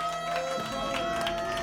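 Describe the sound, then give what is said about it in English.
A canned applause sound effect: dense, steady clapping and crowd noise running at an even level for under two seconds, with a faint tonal hum beneath it and no speech. “And hey, run the applause for Chris's girl.”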